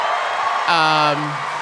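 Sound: audience applause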